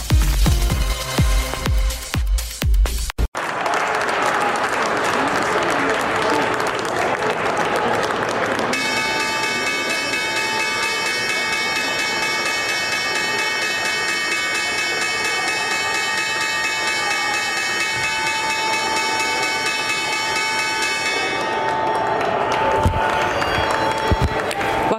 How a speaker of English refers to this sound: That was the opening bell at the New York Stock Exchange. A demonstration there of not shaking hands going on the balcony.